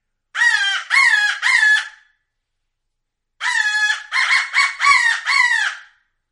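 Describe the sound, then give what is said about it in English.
Loud, harsh cawing blasts from a Harrison crow call: three quick bursts, a short pause, then four more in a rapid series, with no talking. “This Harrison crow call is super loud.”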